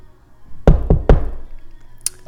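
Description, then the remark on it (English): Three firm knocks on the door of a house in quick succession, fairly loud, with a short ringing decay, followed by a faint high click a moment later. “And there's a knock at the door.”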